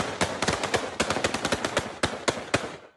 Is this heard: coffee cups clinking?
no